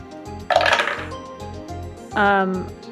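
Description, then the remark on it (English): Two dice rattle and clatter in one short, bright burst over a steady low rhythmic beat, rolled for a maneuver roll, and a brief tonal, voice-like sound follows a moment later. “I'm pushing myself because I accidentally rolled 2 dice, so I will take the 5.”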